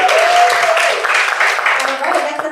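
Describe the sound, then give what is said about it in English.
A crowd breaks into a steady, loud round of applause, the dense clapping holding for a couple of seconds and easing slightly toward the end, with a voice or two cheering over it. “Round of applause.”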